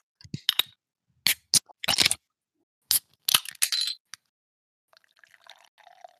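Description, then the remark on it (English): A few sharp clicks and clinks ring out, then a soft, fizzy trickle of beer streams into a glass, fainter than the clatter before it. No one speaks. “The pour. Gotta have the pour.”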